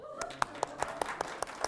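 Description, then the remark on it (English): An audience clapping in a steady, even rhythm, about eight sharp claps in quick succession over a faint background murmur. “That's where you clap.”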